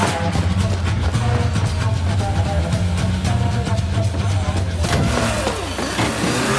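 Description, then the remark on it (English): A car engine roars loudly and continuously, its pitch rising and falling as it revs hard, with a sweeping surge of revs near the end. “He's trying to stop the car.”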